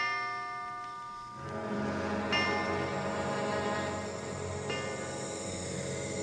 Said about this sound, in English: I dreamed church bells were tolling my death.